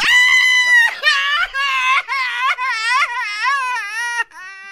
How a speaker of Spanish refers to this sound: Ah, no, estoy gritando, estoy llorando.